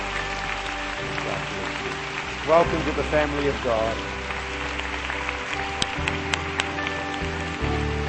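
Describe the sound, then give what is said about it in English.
A church audience claps steadily, a dense patter of many hands filling the room, while a voice speaks over the applause and a few sharp accents cut through near the end. “Church, let's give them a great clap.”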